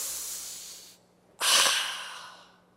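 A deep breath of fresh air drawn in through the nose, a long airy rush, then after a brief pause a stronger, fuller breath that swells and slowly fades. No one speaks.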